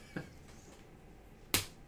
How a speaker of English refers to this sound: Slapping his own knee.